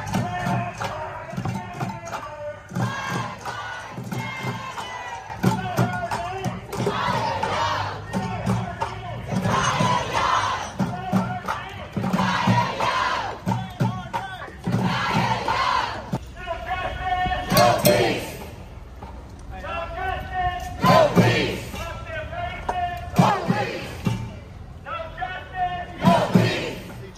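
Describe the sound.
A large crowd of BLM protesters shouts and chants together in the street, screaming the name Takiyah Young and "no justice, no peace", voices rising and falling in loud rhythmic bursts, with overlapping yells and a few sharper cries breaking through near the end.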